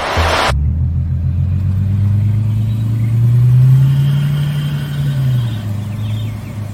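A Bentley convertible's engine idles with a loud, deep rumble, then revs up into a higher, sustained roar before easing back down, preceded by a brief hissy burst at the start.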